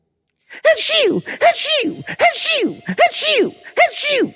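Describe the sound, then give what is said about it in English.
A run of seven sneezes in quick succession, loud, voiced bursts each following hard on the last with brief pauses between. “Did you hear me sneeze 7 times?”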